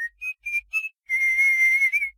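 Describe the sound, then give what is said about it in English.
A person whistles a birdlike tune as an exercise: three short chirping notes, then a long warbling trill that rises at the end, clear with no talking. “Oh, it's a whistle. I guess that's why I call it the bird sing.”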